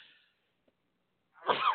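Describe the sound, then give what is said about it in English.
A single loud sneeze bursts out near the end after a short sharp intake of breath, preceded by a faint breathy hiss and near silence. No one speaks. “Bless you.”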